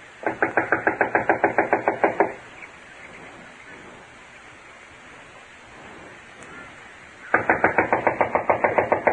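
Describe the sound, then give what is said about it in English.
Rapid, evenly spaced knocking on the wooden back door of a run-down house unoccupied since an inquest, about a dozen quick raps, then a pause of soft background hiss before a second equally brisk burst of knocks. Fairly loud. “I'll knock.”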